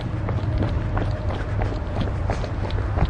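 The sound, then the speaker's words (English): Quick, steady footfalls of people running to catch a train, a regular patter of sharp thumps over a constant low rumble, with no voices. “We are now running to try to catch the train.”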